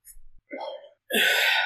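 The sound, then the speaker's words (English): A hiccup-like vocal outburst: a brief high squeak, a short voiced gulp, then a loud, harsh, breathy burst that holds for about half a second. No words are spoken. “You gave me the hiccups.”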